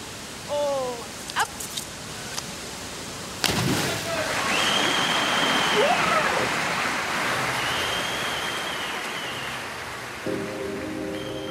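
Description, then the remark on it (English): A few faint knocks, then a sudden loud splash as a diver enters the pool, giving way to a steady muffled underwater rush with bubbling and faint tones, picked up by a microphone at the bottom of the pool, that fade slightly near the end. “When the athlete goes under the water, we shift the perspective to just them and the underwater sound. You hear the bubbles.”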